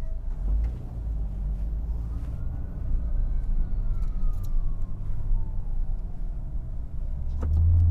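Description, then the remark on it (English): An emergency siren rises and falls slowly over a steady rumble of car traffic on a bridge, faint beneath the engine and road noise, with a few brief clicks and knocks near the end. “I hear the siren.”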